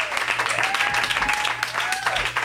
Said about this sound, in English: Everyone, big round of applause for Mike Seaver.